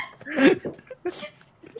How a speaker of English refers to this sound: I've got hiccups now.